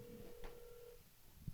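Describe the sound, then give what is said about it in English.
A phone line rings on an outgoing call to a friend while waiting for him to answer: one steady, faint ringback tone lasting about a second, then a quiet pause on the line and a soft click. “Okay, I'm going to phone a friend. I'm phoning my friend. If he picks up.”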